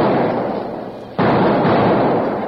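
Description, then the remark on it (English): Several small blasting-powder explosions go off in quick succession in small holes along a stagecoach trail, set off by lit fuses, each a loud rumbling burst that decays into a noisy roar before the next one hits, with no voices. “A moment later, there were several small explosions.”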